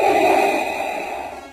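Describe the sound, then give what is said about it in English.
One long, heavy, breathy exhale down a phone line as an obscene prank phone call, fairly loud, with a thin phone-line quality. It holds steady and then fades out at the end, with no talking. “you'd answer the phone and someone would breathe quite heavily down the phone to you”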